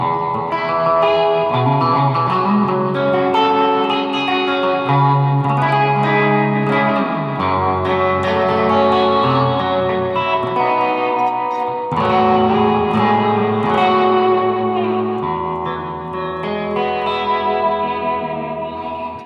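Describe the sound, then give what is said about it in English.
An electric guitar played through an old Fender Dual Showman amplifier plays a steady, loud melodic line drenched in reverb and echo, notes ringing and blurring together with a twangy surf tone, with no talking. “I obviously like a lot of reverb because I play like surf music a lot.”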